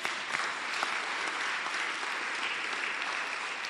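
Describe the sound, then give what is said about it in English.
An audience claps steadily, a dense wash of many hands applauding at an even, sustained level for a few seconds with no voices standing out. “Clap for me, clap for me.”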